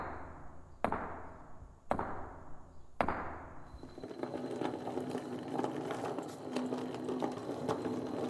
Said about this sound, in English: But it's just a rocky hill. You watch. We knock on this rock and...